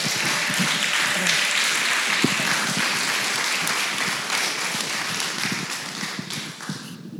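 Steady applause from an audience, a dense wash of many hands clapping at an even loudness throughout, with scattered sharper claps standing out and no one speaking.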